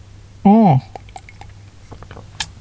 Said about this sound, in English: And I'm going to take a sip of my very nice Zeke's coffee.